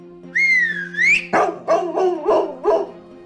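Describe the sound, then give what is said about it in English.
A rising, wavering whistle sounds for about a second, summoning the dog Leibowitz and other dogs, then a burst of four or five sharp dog barks follows in quick succession. “Whistle summons Leibowitz and the other dogs to help her.”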